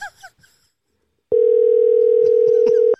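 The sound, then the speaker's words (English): A loud, steady electronic ringing tone of an outgoing telephone call sounds once for about a second and a half, following a brief moment of faint voices at the start. “Can we get just one person to answer the phone?”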